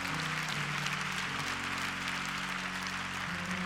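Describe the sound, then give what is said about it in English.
An audience claps their hands in praise to the Lord in a dense, continuous burst of applause, with sustained low keyboard or organ chords holding steady underneath. No one speaks. “Come on, clap your hands and give praise.”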